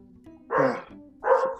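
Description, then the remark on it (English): A small female pet dog barks twice in a house, sharp high-pitched yaps spaced about half a second apart, fairly loud over a quiet indoor hum. “She barks and everything, like she's big, but in the grand scheme of things, hold on.”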